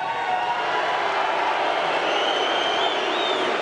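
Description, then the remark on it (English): A large arena crowd of fans cheers and applauds in reception for a former player, a dense, unbroken roar that holds at a steady, loud level throughout, with no distinct voices standing out. “As you can tell by the reception for you.”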